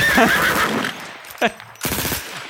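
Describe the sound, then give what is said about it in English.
A horse neighs with a high, shaky whinny that trails off, followed by sharp bursts of rapid gunfire. “Is that when the horse comes back after you?”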